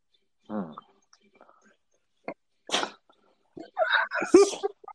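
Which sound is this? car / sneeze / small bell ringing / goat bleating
sneeze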